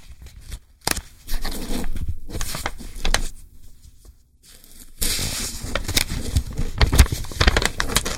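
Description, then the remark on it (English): Rustling crinkle-and-swish noises imitate pages being turned for ASMR, made without any paper, coming in several bursts over a few seconds with a brief quiet gap, then a longer, denser stretch of scratchy rustling. “I'm going to do some page turning ASMR. I'm now turning the page.”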